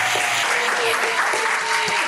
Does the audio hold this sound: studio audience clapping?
yes